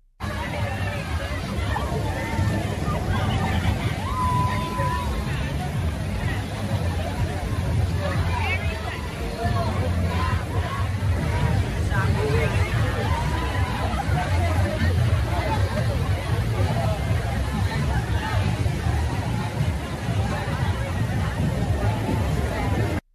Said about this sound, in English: Here's a video of this, you know, adult and kid clothing optional pride event water party for you.